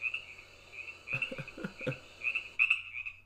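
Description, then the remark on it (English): Frogs croak in a steady, shrill chorus, with a quick series of deeper, rhythmic croaks bursting through in the middle. Moderately loud, with no voices. “The frog's revenge.”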